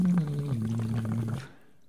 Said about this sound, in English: It's basically like a plastic water bottle with a straw attached to it. And you sing into the straw and you're blowing air through the straw and you're kind of making bubbles in the bottom and you're doing scales.